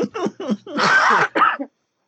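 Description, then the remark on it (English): A person clears their throat in a few short, gravelly bursts, then lets out a harsher, noisier cough and one more brief clearing sound, all fairly loud; caused by the speaker's sinus trouble. “I had to cough and like clear my throat so many times.”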